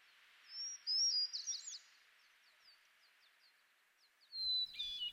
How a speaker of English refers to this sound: you might not know that unlike human vocalists, birds have two vocal cords. And it's an absolute miracle how they use them intertwined. So if you listen very carefully to that hermit thrush song, let's repeat just a little bit.